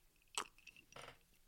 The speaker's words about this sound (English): I'm going to take a sip of this Basil Hayden real quick. That's a bourbon for those of you guys who don't know.